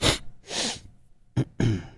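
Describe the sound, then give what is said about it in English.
A series of audible sniffs: four breathy, hissing bursts of air through the nose, two longer pulls and a quick sharp one in between, fairly loud with no talking. “An audible sniff.”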